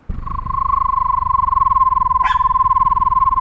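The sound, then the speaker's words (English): A person imitates a screech owl, holding one long, steady, mid-pitched trill that pulses rapidly for over three seconds, with a brief scuffing noise partway through. “What does the screech of a screech owl sound like? Can you describe it?”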